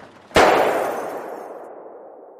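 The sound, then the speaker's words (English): A single loud gunshot in an asylum cracks out sharply, then its echo rolls away and fades slowly over the next two seconds. No one speaks. “Everyone in the asylum heard the gunshot.”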